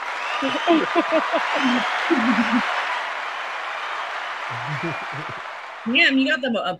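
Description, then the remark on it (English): Audience applause, a dense, steady wash of clapping that slowly thins out, with people talking and calling out over it throughout. “Damn, you got the applause,”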